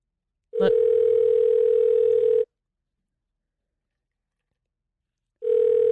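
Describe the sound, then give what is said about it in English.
A steady, low-pitched telephone line tone sounds for about two seconds after a faint click, cuts to silence for several seconds, then starts again, like a ringing signal on a recorded 911 call to Cleveland police. “Let me play this 911 call because Charles Ramsey was an internet sensation for really?”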